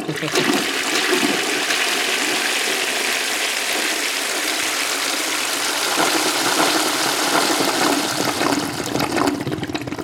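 A toilet flushes loudly, a steady rushing roar of water that holds for about ten seconds with a slight gurgling surge near the end.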